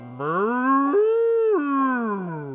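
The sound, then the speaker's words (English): A person imitates a cow's moo with one long, drawn-out voiced call that rises in pitch partway through, holds, then falls away, loud for over two seconds. “Oh, that was a good cow noise”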